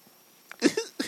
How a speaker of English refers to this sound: So he was coughing.